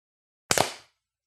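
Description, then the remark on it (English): A sharp burst of hand clapping, two or three claps landing almost together as one slightly ragged smack, followed by a brief fading ring. No voices. “Let me actually do a clap.”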